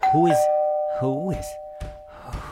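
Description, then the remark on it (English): An apartment doorbell chime rings out on Christmas morning with a sustained tone lingering through the whole moment, while a voice makes short vocal sounds over it and a few soft knocks on the door follow. “Doorbell's ringing. Why is my doorbell ringing?”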